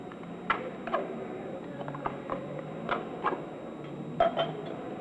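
Beer is poured from a can into a glass, with a low steady fizz and a scattering of sharp glassy clinks and taps, no one speaking.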